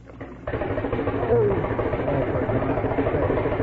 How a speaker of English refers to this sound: Gee, what was that? Water pipe. It was knocking. I thought the house was falling in. Jug, it wasn't the house. It was the water pipe knocking.